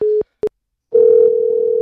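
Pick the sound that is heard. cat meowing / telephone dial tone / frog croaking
telephone dial tone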